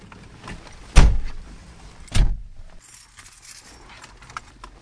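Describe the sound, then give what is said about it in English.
Two solid car door thumps about a second apart, loud, followed by a muffled, quieter interior hush as someone gets into the car. “Well, let's hop in the car.”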